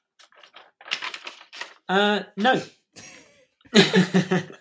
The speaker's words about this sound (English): Thank you for the comedic rustling of the paper.